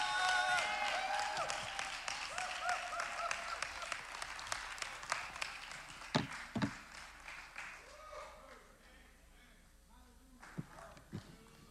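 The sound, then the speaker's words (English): A crowd applauds loudly and steadily, the dense clapping gradually thinning and fading over several seconds, with a few scattered sharp claps and faint voices near the end. “Y'all give a round of applause one more time.”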